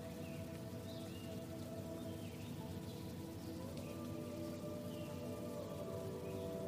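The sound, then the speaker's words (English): Steady, even rush of water trickling from a nearby forest stream filling the whole clip, with a few faint, high bird chirps flickering in and out above it. “You can hear water trickling from a stream nearby.”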